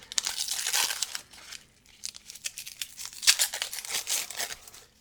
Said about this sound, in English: Notably, the label is applied to the outside of the straw paper wrap, which is then glued to the brown glass bottle. So I'm going to tear the paper, get to the bottle inside.